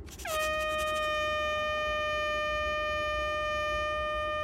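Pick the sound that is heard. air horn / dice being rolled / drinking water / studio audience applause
air horn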